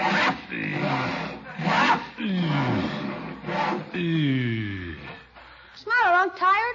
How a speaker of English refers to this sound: Never talk to a man when he's sawing